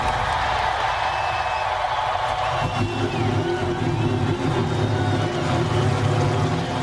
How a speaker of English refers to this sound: Now it is my honor to start this race. Gentlemen, start your engines.